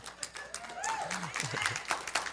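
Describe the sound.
An audience breaks into applause, a dense wash of many hands clapping at once, steady and fairly loud, with scattered voices and cheers rising through it.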